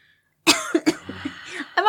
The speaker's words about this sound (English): I'm already coughing because I'm remembering this story.